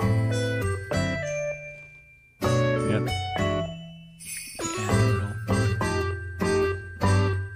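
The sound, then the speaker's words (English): A bright, cheerful Animal Crossing music loop for snowy weather in December, with sleigh bells jingling over bouncy melodic notes and a steady low bass, played clearly with no talking. “Creating a differently textured soundscape. A sleigh bell.”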